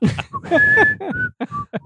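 A person whistles a short run of clear notes, one long held tone followed by several brief chirpy ones, fairly loud, with some low vocal sounds underneath.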